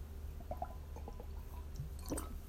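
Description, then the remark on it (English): Someone takes a quiet sip of water: a few small wet slurps and lip sounds, then a soft swallow near the end, with no talking. “I'm going to take a sip of water before I start the last 90 seconds of the podcast.”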